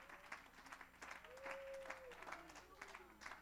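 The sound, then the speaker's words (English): A church audience claps together in a steady, even rhythm, about two to three claps per second, giving praise to God, with sustained voices or humming carrying faintly underneath. “Somebody clap and give God praise.”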